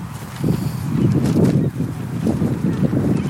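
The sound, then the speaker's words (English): Steady wind blows outdoors at the Acton low and mid power rocket launch field, a low rumbling roar that buffets and swells in uneven gusts, with faint rustling on top and no voices. “Wish it were less windy.”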